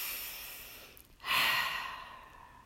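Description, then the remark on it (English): A soft, airy inhale through the nose is followed by a brief pause, then a louder, longer breath out through the mouth that gradually fades, alone with no talking. “Again, we're breathing in through our nose and out through our mouth.”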